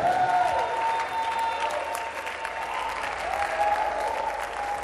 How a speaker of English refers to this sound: Come on, clap your hands and praise.